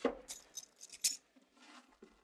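Handcuffs rattle and click shut on a man in a quick series of sharp, bright metallic clinks and ratchets, followed by softer shuffling and a final faint click, with no one speaking.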